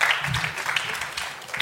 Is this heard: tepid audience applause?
yes